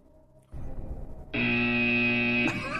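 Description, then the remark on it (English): A loud, steady electronic buzzer drones for about a second during a trivia game about 2012 Twins pitchers, a harsh flat tone rich in harmonics, following a burst of rumbling noise and cutting off abruptly. “I feel like that's just a buzz on the entire 2012 Twins, which is very fitting.”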